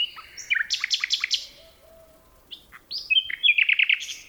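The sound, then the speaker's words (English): Two nightingales sing in a forest near Kent, England, trading bright, rapid trills and sharp whistled notes in two lively bursts separated by a short pause, with faint outdoor ambience and no voices. “Phil Riddett recorded these two nightingales in a forest near Kent, England.”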